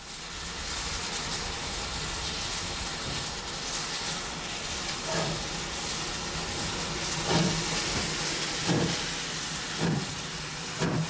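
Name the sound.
steam train hissing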